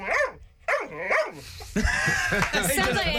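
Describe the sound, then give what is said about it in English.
A few loud dog barks come in a rhythmic run, three distinct yelps first, then a busier stretch of barking mixed with other voices and noise. “Sounds better actually when the dog says it.”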